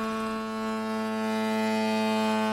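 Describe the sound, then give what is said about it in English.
A deep, throaty ship's foghorn blast drones steadily for the full couple of seconds, loud, its low fundamental layered with rich buzzing harmonics and no voices present. “By the way, last show ended on a very throaty foghorn.”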